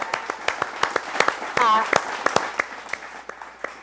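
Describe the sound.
An audience claps for a 13-year-old girl who has just said she accepted Christ and is now a Christian, with loose, scattered claps, steady throughout at a moderate level. Partway through, a voice lets out a brief, pitched cheer over the clapping.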